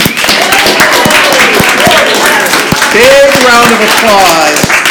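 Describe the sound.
Loud, steady applause from a group, dense rapid clapping for the full five seconds, with voices cheering and whooping over the top.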